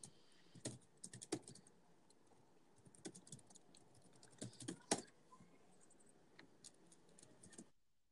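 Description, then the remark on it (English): Rapid, irregular keyboard typing clicks, fairly quiet, with a few sharper louder keystrokes scattered through a steady run of tapping. No one speaks. “So I can hear your keyboard clicks.”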